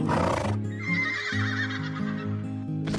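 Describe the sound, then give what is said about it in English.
A horse gives a long, wavering whinny after a brief noisy burst, with steady low tones stepping beneath it throughout; no hoofbeats stand out. “My unicorn just arrived.”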